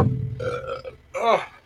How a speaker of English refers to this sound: Who's belching? Me.